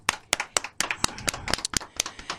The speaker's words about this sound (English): My daughter is graduating this August from Howard University. Hold on, wait. Give a round of applause for that, y'all.